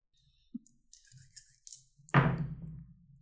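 Two six-sided dice (2d6) rolled on a table to roll up loot in a game: a few light, scattered clicks and rattles, then a sudden loud clatter that rings out and fades over about a second. No one speaks.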